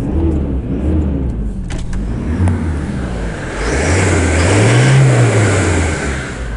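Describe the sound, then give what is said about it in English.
A car engine turns over and settles into a steady idle, then revs up once in a rising, swelling roar before dropping back. Loud, with no one speaking. “Let's have a listen to the engine.”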